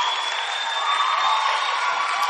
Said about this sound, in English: Look, clap for me, clap for me, clap for me, clap for me.